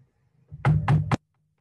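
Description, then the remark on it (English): Three quick, heavy knocks on the front door of a house, loud, landing in rapid succession with a solid thud to each, then silence. “That was really loud. What was that? I'll get it.”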